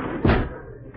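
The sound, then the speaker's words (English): A single solid, loud thud of a door being shut, followed by quiet with faint background noise as the sound fades away. “Wait, I'll close this door.”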